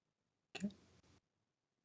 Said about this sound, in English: That was a big gasp there.